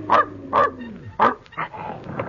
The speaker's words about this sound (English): Where's that dog? Probably in the elevator. It belongs to old Andy, the operator.